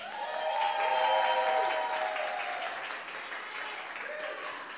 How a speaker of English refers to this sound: we're also joined by two special guests. Let's have a warm round of applause